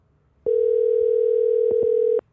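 A phone line sounds a single steady electronic tone lasting nearly two seconds, loud and clear, with a couple of faint clicks near its end and no voices, as a phone call is placed.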